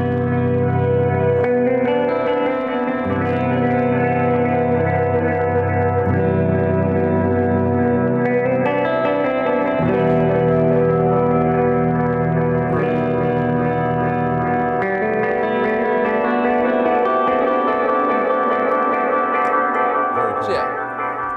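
Electric guitar played through a tremolo pedal with reverb from an RV6 pedal: sustained, washy chords ring out steadily for about twenty seconds, loud, with long echoing tails blending each change into the next.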